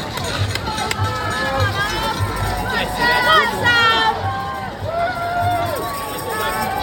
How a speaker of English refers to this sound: The crowds, despite the drizzle, tripled in size, and they were just screaming. The best of humanity, just rooting for you. Have a listen to Greenwich Town Centre. Listen to the people just shouting my name.